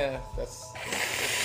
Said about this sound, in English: That's crap, blow my nose.